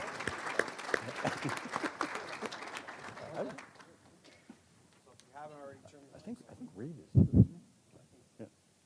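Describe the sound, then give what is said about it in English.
An audience breaks into a burst of dense, steady clapping to welcome guests onto the stage, fading out after a few seconds and leaving scattered voices and a couple of low thumps. “Round of applause.”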